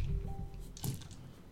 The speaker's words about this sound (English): Apparently. The dice make the Facebook Messenger sound. Isn't that delightful?